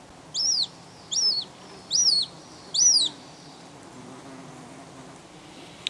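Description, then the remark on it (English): A hen harrier gives four sharp, rising-and-falling call notes in an evenly spaced series, clear, over a quiet low rumble of outdoor background with no voices; recorded by Sean Renane of Irish Wildlife Sounds. “Now, myself and John didn't spot a hen harrier on Wednesday, so the recordings that you heard there were made by Sean Renane of Irish Wildlife Sounds fame.”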